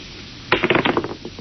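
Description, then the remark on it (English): Dice are rolled, trying for a seven, and tumble across a hard surface in a quick burst of sharp clicks and clatters that bounce irregularly, then thin out and settle over about a second, with no voices. “Clinton, do you know what the odds are against my rolling a seven?”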